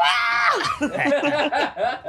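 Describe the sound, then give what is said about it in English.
A voice imitates the pained scream of the cartoon cat Tom from Tom and Jerry, a loud, strained wail that starts high and sustained, then breaks into wobbling, sobbing yelps for about two seconds. “Have him screaming like Tom from Tom and Jerry.”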